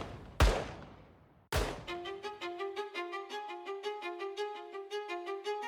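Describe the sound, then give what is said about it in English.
Two loud, sharp gunshots ring out about a second apart as a gang holds up an armored car at a bank, each with a short echoing tail, followed by a rapid, steady ringing like an alarm bell. “when suddenly, gunshots pierced the air.”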